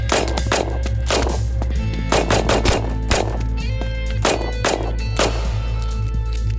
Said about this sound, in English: So, just to clarify, you started taking gunfire immediately upon arrival at the scene? Yes, sir. And after returning fire, you shot one suspect in the leg? Yes, sir.